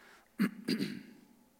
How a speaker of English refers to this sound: Forgive me for clearing my throat so much. No coffee, you know.